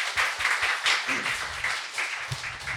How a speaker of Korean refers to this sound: 네, 박수 부탁드려요. 네.